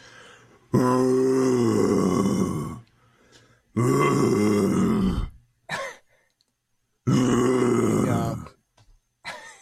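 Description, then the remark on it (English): A lion growls in three long, loud, rumbling bursts, each lasting about two seconds with a throaty, harmonic roar, separated by short quiet gaps and a few faint huffs. “It might also be a lion. I'm gonna go a lion. Yes, Alex the lion.”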